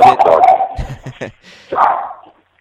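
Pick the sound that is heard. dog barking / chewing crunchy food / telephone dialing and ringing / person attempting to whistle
dog barking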